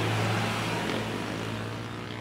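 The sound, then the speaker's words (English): A car engine runs steadily, heard from inside the vehicle as a constant low hum with broad road noise, loud and continuous throughout, with no voices. “And we're back in the car, and I must say I'm pretty moved by what I saw there.”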